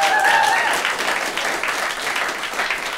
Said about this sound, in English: Who thinks that Twitter and Facebook and such should take a strong hand in severely limiting online speech? Those of you who think so, clap.